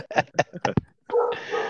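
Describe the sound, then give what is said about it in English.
A dog barks four or five times in a quick, fairly loud burst, followed by a brief pause and then a steady stretch of sound. “somebody in the background needs some Scooby snacks or something. Yeah. Right. take the dog out.”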